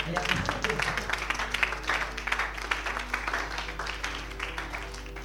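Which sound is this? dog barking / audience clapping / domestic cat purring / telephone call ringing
audience clapping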